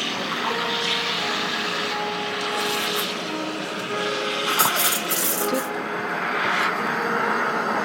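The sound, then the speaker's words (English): A steam wand steams milk for a bright purple ube drink with a steady, loud hissing roar and a faint whining tone running through it, plus a few brief bursts of brighter hiss, continuous for about eight seconds. “So yeah, you just steam the milk.”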